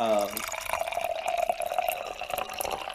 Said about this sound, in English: And I right now want to quickly take a moment of silence. I'm going to just pour out a little bit for my homies.